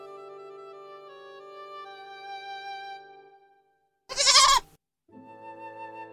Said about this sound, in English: Where'd that goat come from?